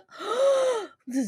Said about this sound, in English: You have to, if you give a gasp like that, you have to share it.